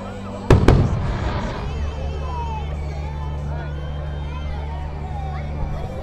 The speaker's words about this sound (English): So I'm gonna let you guys watch the firework display here, and I'm gonna snap me some photos.